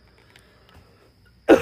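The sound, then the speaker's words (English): Near silence gives way to a single sharp, loud cough that bursts out right at the end, with no talking around it. “Stop coughing, dude.”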